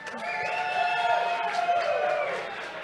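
A crowd cheers and whoops for a couple of seconds, a steady wash of many voices with some higher sustained yells, tapering off at the end.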